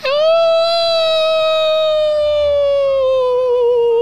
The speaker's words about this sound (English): And suddenly the wolves howl.